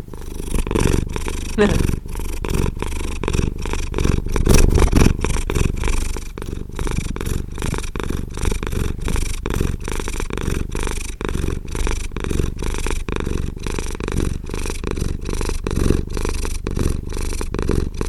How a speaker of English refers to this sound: That's Mr. Buck. That's right. He's our master purr. That's the very pleasant purr.